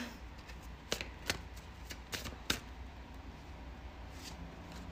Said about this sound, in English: And sometimes I shuffle like this, but you guys can't see me, so I don't know why I said that.